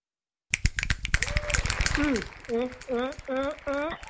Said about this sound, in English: Finger snaps and hand claps is what we get. Finger snaps and hand claps, baby. Yes, indeed.